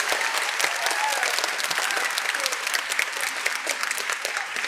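An audience at the Batavia Fine Arts Center claps steadily for the piano accompanist, a dense, even wash of many hands with no pauses, keeping a consistent loudness for the whole stretch, with faint voices mixed in beneath the clapping.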